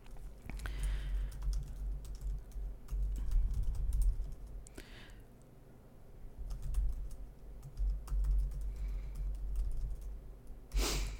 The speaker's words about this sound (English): So, let me finish typing this.